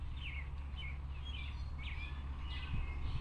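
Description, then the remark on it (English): Birdsong in a garden on a sunny day: several bright, sweeping chirps repeat every half second or so over a steady low outdoor rumble, the birds sounding fairly quiet. “I feel loved by the bird song and the warmth of the sun on my skin.”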